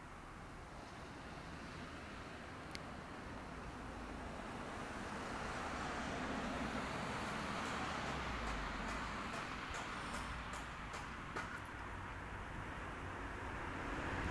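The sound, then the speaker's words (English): Steady road traffic rumbles, swelling as cars pass and then easing slightly, a broad continuous hiss with no voices. “Get more cars”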